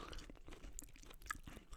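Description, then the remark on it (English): Chewing and swallowing of hot spicy food, with crisp, crunchy bites and wet mouth clicks, repeating irregularly over a couple of seconds, with no talking. “I've swallowed it. I am instantly greeted with fire burning in my mouth.”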